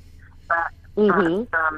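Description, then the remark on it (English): A voice on a phone line breaks up into three short, clipped bursts, each cut off abruptly by moments of dead silence, so nothing intelligible comes through. “Sorry, you're coming and going for some reason.”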